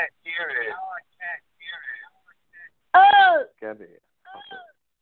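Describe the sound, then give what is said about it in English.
A voice echoing back over a call line: several short, warbling vocal fragments separated by brief gaps, with one louder burst partway through, moderately loud and slightly tinny. “Oh, it's still repeating again.”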